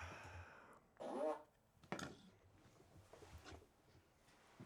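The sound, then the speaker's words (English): A short, buzzy fake fart noise from a remote-controlled fart machine blurts out once, fairly loud, followed by a sharp knock and then quiet background rustling. “Can you put the fart machine remote in the middle?”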